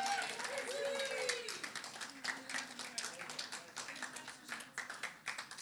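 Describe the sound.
An audience claps steadily throughout, a dense patter of many hands at a fairly even level, with indistinct voices and a few whoops mixed into the applause.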